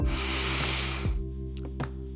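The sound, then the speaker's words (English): A long, airy inhale, a big deep breath in to a count of three as part of a breathing exercise, with a steady breathy hiss lasting just over a second, then cuts off, leaving only a steady low droning hum that runs underneath throughout. “Big deep breath in to the count of three.”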